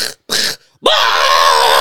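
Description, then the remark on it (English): A voice mimics gunfire with two short, harsh bursts, then switches to a loud, steady buzzing growl imitating a chainsaw that holds through to the end. “Even starts imitating the chainsaw. Gunshots.”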